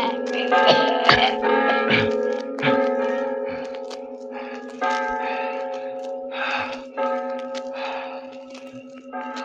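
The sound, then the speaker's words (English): Bells rung by a man pulling bell ropes ring loudly and continuously, overlapping strikes blending into a dense, sustained metallic peal with long humming tones underneath, a few sharper clangs standing out near the start. “You'll never ring those cursed bells again.”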